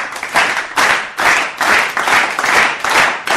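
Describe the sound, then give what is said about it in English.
A live audience claps and applauds loudly and steadily, a dense, continuous patter of many hands with slight swells, lively, with no one speaking. “Oh, we got a lively, lively crowd.”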